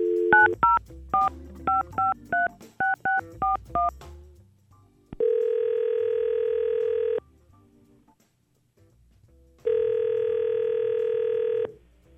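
A rapid series of short, beeping telephone keypad tones dials a number, followed by two long, steady ringback tones separated by a pause of silence, as the Y100 radio show places a call. No voices are heard.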